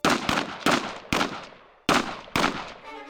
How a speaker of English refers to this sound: At 8:45 p.m., six gunshots split the air in the Piazza Marina. A throng of men and women rushed towards the sounds.